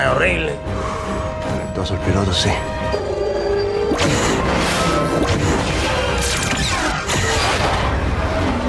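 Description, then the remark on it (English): Dense sci-fi space battle sound effects likened to the space battle sounds of The Phantom Menace: loud, continuous layers of crashes and heavy impacts with whooshing and mechanical rumbling, plus a sharp burst of noise partway through. “Sound like Phantom Menace space battle sounds.”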